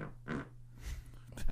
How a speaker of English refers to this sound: We definitely picked that fart up.